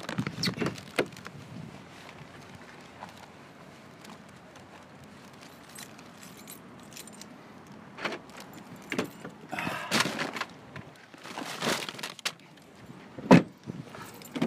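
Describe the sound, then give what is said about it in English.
Someone getting into a car in Cork in muggy, humid July 2018 weather: scattered footsteps and rustling, a jangle of keys, then a cluster of sharp clicks and thumps near the end as a door shuts. “I'll get in the car and I'll turn off the recording.”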